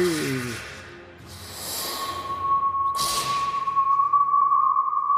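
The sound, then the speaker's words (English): A steady, thin distant whistle rises and holds to the end, while two sudden whooshing gusts of wind sweep through, the second one sharp and loud, heard from within the shelter of a volcano. No one speaks. “You hear a distant whistle and feel a sudden whip of wind, even from within the shelter of the volcano.”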